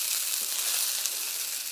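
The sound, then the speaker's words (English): Rice and leftovers sizzle steadily in a hot wok, a bright continuous hiss with fine crackling pops throughout and no voices. “And you hear that wok going.”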